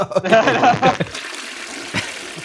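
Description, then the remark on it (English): A toilet flushes: a loud, gurgling rush of water with a whistling tone lasts about a second, then fades into a steady, quieter hiss of water refilling. “This is definitely a flush. Go ahead. Pull that handle.”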